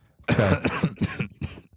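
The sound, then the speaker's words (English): A short fit of harsh coughing: one long rasping cough followed by three or four quicker hacks in an uneven rhythm, with no talking. “That you almost coughed in the other direction and that we want to keep the mic right up here.”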